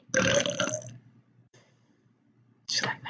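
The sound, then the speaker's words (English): A loud burp rumbles for nearly a second, followed by a short pause and then a brief burst of speech or another throaty sound. “Thursday, hold on, I'm gonna burp.”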